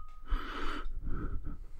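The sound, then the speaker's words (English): Someone breathes heavily and theatrically: a long, loud, rasping inhale-exhale followed by a second breathy gust, hoarse and exaggerated, with no words spoken. “Heavy breathing, it says.”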